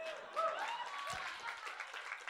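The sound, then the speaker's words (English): A brief patter of clapping from a few audience members in a room, steady and moderately loud, with faint crowd voices mixed underneath. “And the rest of us are like that poor person who started clapping.”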